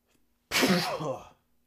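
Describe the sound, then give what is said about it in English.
A single loud sneeze, a sudden explosive burst that trails off after about a second, with near silence before and after. “Oh, I gotta sneeze.”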